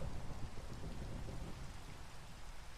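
Steady rain hisses across the full range, with a low rumble of thunder rolling underneath, continuous and fairly even throughout with no voices.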